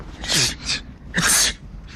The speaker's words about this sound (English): I'm on Planet X looking for a dweeb who wears green fatigues. He wears this jacket. He's got long hair. It comes over his eyes. He wears glasses and sneezes.